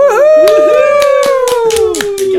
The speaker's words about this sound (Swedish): Jag tror att det är första gången någon får en applåd i podden. Ja, faktiskt. Men kanske inte det sista.